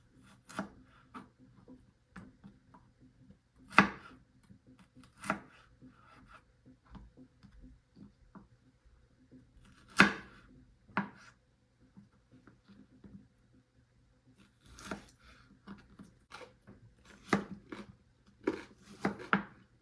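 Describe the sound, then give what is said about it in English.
A knife cuts carrots into thin slices for a nabe hot pot, crisp cuts tapping against a cutting board at an uneven pace, with sharp individual chops separated by short pauses and a low steady hum behind them. Nobody speaks. “So I just like cut them up into thin little slices, and it's really good in there.”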